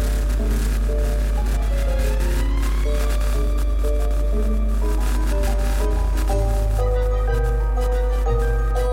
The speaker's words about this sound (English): It was a small, shiny object that glowed with an otherworldly light. They approached it with caution, wondering what it could be. Suddenly, the object began to vibrate and emit a strange hum.